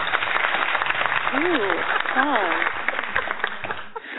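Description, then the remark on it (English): A burst of canned crowd applause played from a crowd button, a steady dense clatter of clapping running the whole four seconds, with a couple of rising-and-falling cheers or whoops riding on top midway through. “You're going to use that crowd button, aren't you?”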